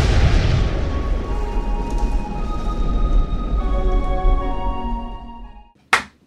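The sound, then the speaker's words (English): A deep, booming rumble with faint ringing tones fades out over several seconds, then two sharp hand claps land in quick succession at the very end. “The double clap signifies the start of an episode.”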